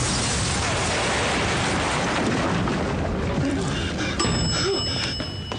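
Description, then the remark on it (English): A huge explosion roars continuously at full force, a dense, rumbling wall of noise that barely changes for several seconds before easing slightly at the end. “Daddy's coming home! Which means a very big explosion!”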